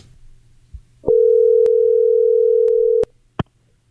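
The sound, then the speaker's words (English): A steady, loud telephone dial tone, as a phone call is placed to World Poker Tour champion David Baker, holds for about two seconds, then cuts off, followed by a sharp click; faint low hum and small clicks sit underneath, with no voices. “So what we're going to do is we are going to call recently anointed WPT champion David Baker on the phone, and he's going to talk about the 10K structures at the World Series of Poker this year.”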